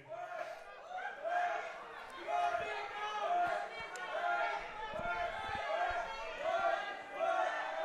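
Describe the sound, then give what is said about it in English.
A loud, noisy wrestling crowd roars and chants continuously as a wrestler comes to the ring, with many overlapping voices shouting in rising and falling waves and occasional sharp thuds or claps. “Maybe he won't speak because the crowd is.”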